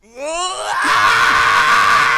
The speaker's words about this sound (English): I'm sorry, the cameraman has the headphones on, and I just did that scream.